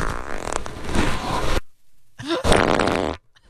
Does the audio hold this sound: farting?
yes